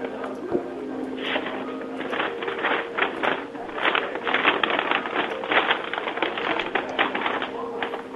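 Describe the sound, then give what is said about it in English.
A paper bag is crinkled and rustled in steady irregular bursts of crackling for several seconds, with a faint low hum in the background. “You think you're playing with that paper bag enough?”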